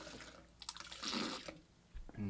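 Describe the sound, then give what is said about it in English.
A gush of about a liter of regurgitated water pours and splashes out of a mouth in a couple of wet bursts, with a brief gurgling spurt at the end and no talking. “Take out like a liter of water.”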